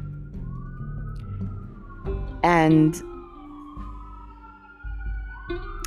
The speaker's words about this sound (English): I'm gonna allow these sirens to have their way. I live in the heart of the city with my husband in a loft, and it happens sometimes. All right, it seems like they've gone on now.